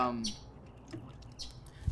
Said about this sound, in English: First point I want to make, is that this bird is annoying.